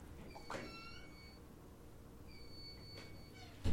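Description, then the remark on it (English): Someone else's fire alarm sounds two long, steady, high-pitched electronic tones about a second apart, faint over a low background rumble, with a brief thump at the end. “Our fire alarm is going off, y'all.”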